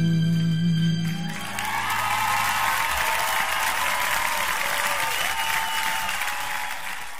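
The Deutscher Jam community crowd breaks into sustained applause, a dense wash of clapping that swells quickly and holds steady for several seconds, with a faint musical tone fading out at the start.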